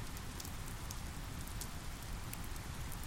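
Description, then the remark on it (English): Steady rain from a storm pours down in a dense, continuous hiss, with scattered brighter patters of drops striking a surface and a low rumbling undertone throughout. “Shelter From The Rain”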